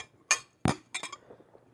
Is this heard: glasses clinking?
yes